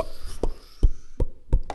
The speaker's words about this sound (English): What are all these bubbles coming from, sweetie? Oh, shake. Oh my goodness, there's water coming out of the ground.